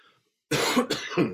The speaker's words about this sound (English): I apologize for coughing like this.